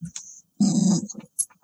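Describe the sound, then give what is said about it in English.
A female dog gives a short, low growl at something, one rough burst lasting under a second, framed by a few quieter snuffly sounds. “Growling at something.”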